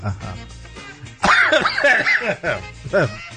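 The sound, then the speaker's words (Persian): A sudden, loud cough bursts out, followed by animated, excited vocal sounds and quieter murmuring voices in the background. “ببخشید که من سرفه کردم ولی هیجان زده ام الان.”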